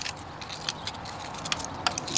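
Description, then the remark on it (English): A man crunching a potato chip: a string of crisp, crackly bites coming in irregular bursts, fairly quiet overall, with no voices. “Okay, now he's just crunching the chip itself.”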